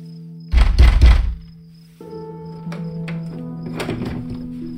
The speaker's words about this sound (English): I pounded until I thought my hand might split open, then switched to the other hand.